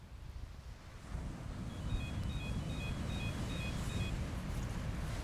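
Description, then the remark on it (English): A team's radar detector on the shores of the Outer Banks in North Carolina emits a run of about six evenly spaced, high-pitched electronic beeps, each a quick two-tone chirp, faint against a steady roar of wind and surf. “On the shores of the Outer Banks in North Carolina, ETs produce these tones via the team's radar detector.”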